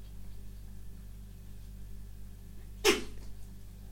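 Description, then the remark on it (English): A single short, sharp, loud sneeze bursts out near the end against a quiet background with a low steady hum and no talking. “They're loud sneezes, but they are the cutest little sneezes ever.”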